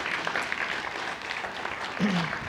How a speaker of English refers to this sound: All right, so can we celebrate our dads? Let's clap for them.